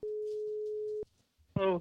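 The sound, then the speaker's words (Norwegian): A single steady telephone ringback tone hums for about a second, cuts off, and after a short pause the call is answered on the first ring by a clear voice. “Nei, ta på første ring.”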